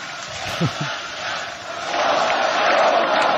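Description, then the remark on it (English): A large crowd at a speech roars and chants together, a dense wash of many voices that swells slightly louder toward the end, with a few shouts rising out of the mass early on. “And they're chanting now for Cartoon Man.”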